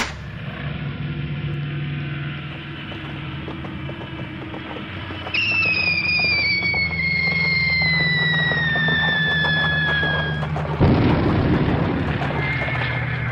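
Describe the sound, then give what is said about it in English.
An aircraft attack: a plane banks for another attack with a steady low rumble, then a long high whine slowly falls in pitch for about five seconds before a sudden loud explosion bursts out on the road and keeps roaring. “The plane's banking for another attack.”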